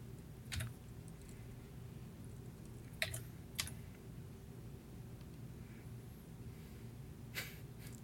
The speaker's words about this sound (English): I'm typing.